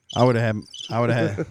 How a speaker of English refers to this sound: Just hear crickets out there.